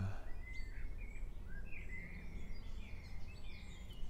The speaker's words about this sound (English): And there's birdsong and chainsaw, apparently.